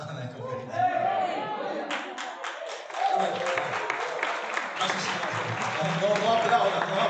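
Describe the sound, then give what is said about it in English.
Audience applause at a conference in Costa Rica swells after a couple of seconds into dense, steady clapping, mixed with murmuring crowd voices and some talking, and stays loud through the end. “Okay, please, save your applause.”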